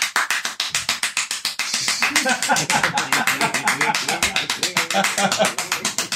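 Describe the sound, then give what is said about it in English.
Rapid, steady clapping drives a song, sharp claps repeating several times a second throughout, over singing and a tonal musical backing at a loud, even level. “The claps look crazy on the screen.”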